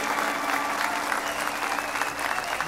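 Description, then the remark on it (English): An audience claps together as a clap offering to the Lord, in a dense, steady burst of applause that holds at an even level throughout, many overlapping hand claps merging into a continuous crackling roar with no voices standing out. “Now give the Lord a clap offering.”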